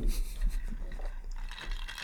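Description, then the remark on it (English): Ice cubes shift and clink in a glass of water, a steady run of small crunchy rattles and splashy knocks at moderate loudness over about two seconds. “The audience, hear that water? That ice water.”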